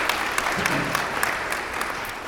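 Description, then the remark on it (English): A church audience at Trinity applauds after worship in a dense, steady wash of many hands clapping, holding an even loudness for a couple of seconds with no voices over it. “You can applaud that. You're allowed to applaud.”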